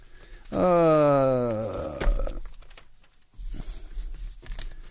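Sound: papers being shuffled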